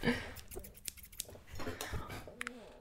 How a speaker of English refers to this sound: just grabbed some scissors, did a little maraca dance